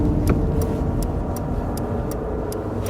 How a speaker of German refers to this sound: Fahrer, halten Sie den Wagen an!